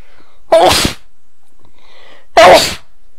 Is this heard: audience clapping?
no